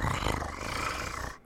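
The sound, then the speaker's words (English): A human voice imitates a sea creature's roar, one sustained, rough, low growling bellow lasting over a second, loud throughout and then cutting off abruptly. “The sea creature approaches you.”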